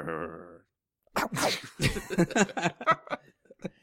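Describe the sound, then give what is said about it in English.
A man's voice makes a single short, strained imitation of a dog bark, then after a brief pause lively, animated talking follows. “That was a bad dog bark.”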